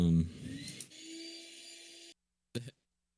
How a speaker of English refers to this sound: I hear the vacuum. Yeah, that's me. People are vacuuming.